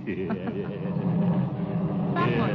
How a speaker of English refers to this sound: What's wrong with the car? The car? It's steaming.